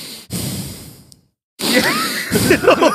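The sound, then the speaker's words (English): A voice imitates heavy breathing heard in the background of a scene: two loud, drawn-out breaths separated by a short pause, the second one rougher and partly voiced, like a raspy, groaning exhale. “Just the heavy just breathing.”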